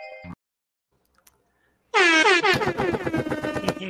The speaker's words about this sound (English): Oh no, the air horn.